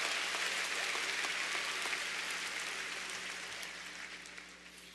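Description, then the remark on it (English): A crowd applauds steadily, a dense wash of many hands clapping at once with no voices on top, tapering off slightly toward the end. “So I just want you to give yourself a round of applause for making this place such a unique place.”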